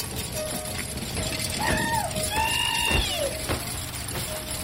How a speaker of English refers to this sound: The hook was attached to a snaking iron chain that disappeared into a cavity past the iron grid of the bracket. This chain began to slowly but purposefully retract.